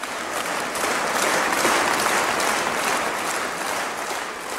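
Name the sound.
concert crowd applause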